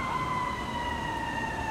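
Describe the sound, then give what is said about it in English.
An ambulance siren wails steadily, a sustained high tone that dips slightly in pitch, heard alone at moderate volume over a faint background rumble. “I don't know if y'all hear that. But this ambulance is going crazy.”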